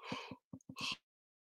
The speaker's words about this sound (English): I'm sure people will love me yawning on the camera.